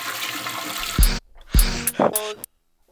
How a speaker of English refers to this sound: Okay, we're getting there. We get the last toilet flush. Let's see what we can do with this one, guys. You know, I do like the toilet flush.